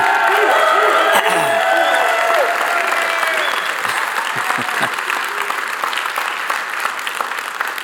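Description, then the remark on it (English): A large audience at Celebration Church, standing, applauding and cheering loudly, a dense wash of clapping with shouts and whoops rising through it, steady and sustained for the whole stretch with only a slight fade toward the end. “Anyway, so those of you standing and yelling here, recite together with me”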